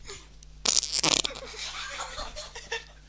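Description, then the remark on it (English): A loud fart bursts out right in someone's face by a microphone, in a couple of raspy pulses, followed by a lingering sputtering tail. No one speaks. “That was a nice fart by …, right in my face.”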